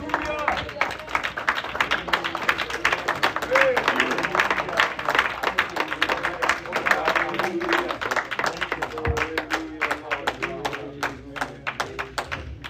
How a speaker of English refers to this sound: Give the Lord a hand clap before you sit down.